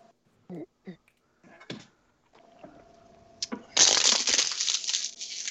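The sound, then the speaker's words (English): A plastic water bottle is crunched, a loud, sustained crackling and crinkling that lasts a couple of seconds, preceded by a few brief vocal sounds and a soft click. “I crunched a water bottle.”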